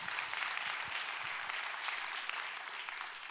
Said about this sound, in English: You can clap. It's okay.